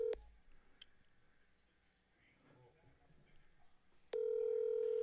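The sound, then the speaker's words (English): A telephone ringback tone sounds over a speakerphone during a call placed at 10:30 at night: a short steady ring at the start, a quiet pause with faint background noise, then a loud sustained ring tone returning near the end. “Watch, they don't even have an answering machine set up.”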